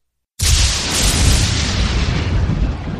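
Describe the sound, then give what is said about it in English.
After a brief silence, a sudden loud crack and explosion bursts in as a lightning bolt strikes a bullet in flight and explodes it, followed by a dense, crackling roar with a deep rumble that stays strong to the end. “A lightning bolt struck the bullet in flight, exploding it inches away”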